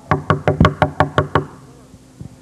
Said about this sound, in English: And the verb there means constantly knocking. Behold, I stand at the door and I'm constantly knocking.